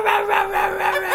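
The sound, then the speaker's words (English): A person imitates a small dog's yippy barking at a wrestling match: a rapid, continuous string of high-pitched yaps, fairly loud, with no talking. “The yippy little dog.”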